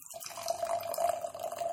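Beer spilled in a messy pour from a can trickles and drips in a steady, continuous stream, a moderately quiet liquid splashing sound with no talking over it.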